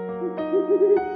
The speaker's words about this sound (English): Hey, it's Polly, our owl. She's flying in with the fun facts.